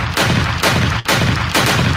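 Loud, heavy bursts of gunfire repeat about every half second, four booming volleys with dense crackling noise between them and no voices.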